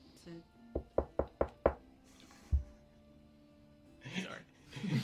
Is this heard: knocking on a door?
yes